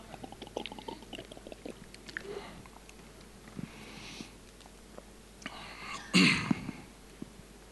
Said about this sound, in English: Let me just say that before we carry on, and I'm one-handedly opening a bottle of water. It's amazing. Look at that skill.